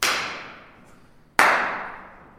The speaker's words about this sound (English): After we exhausted everything in the anechoic chamber, we headed next door to the echoic chamber. And of course, based on our prior experience, we decided to clap in there as well.